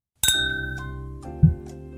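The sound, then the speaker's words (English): Glasses clink together in a toast: one bright strike that rings on with clear, high tones, followed by a few softer taps and a dull knock as the ringing fades. “Cheers.”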